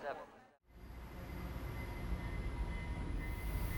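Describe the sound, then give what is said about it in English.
A brief muffled voice, then a short silence before the heavy rumble of train 534 departing from Platform 7 builds and holds, loud, with a faint steady whine riding over the low clatter. “All aboard. Train 534 to Burgerville, South Panorama, leaving now from Platform 7.”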